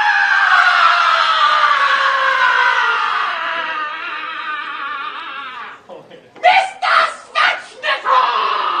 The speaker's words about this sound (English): I'm probably going to take that scream out of it and just make it Mr. Smeshmeshmoff, whatever his name is.